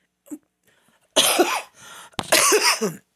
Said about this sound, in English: Excuse me. Yes, I have to say it. I still have my cough. No, I do not have COVID.